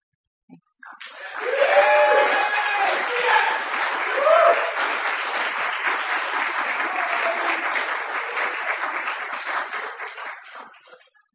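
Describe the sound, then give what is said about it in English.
An audience at a poetry night at the Amadeus Project breaks into sustained applause for a poet who has just read, a dense patter of many hands clapping steadily for about ten seconds, with a few faint cheers or voices mixed in before it tapers off. “Give her a hand.”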